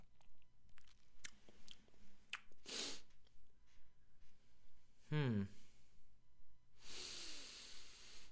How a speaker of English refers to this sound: Interesting first sip right there, you guys. Interesting first sip.